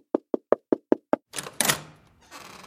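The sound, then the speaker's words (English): A stranger knocks on a door six times, quick, evenly spaced and crisp. A rough scraping, rattling noise follows, like the door being pulled open. “And shortly after the Rebbe left, a stranger came and knocked on the door.”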